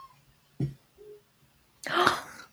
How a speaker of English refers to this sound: I heard her little meow. Hi, Marge. Welcome to the podcast, Marge.